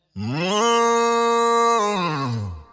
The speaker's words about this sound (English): Moo moo moo moo moo moo moo moo moo.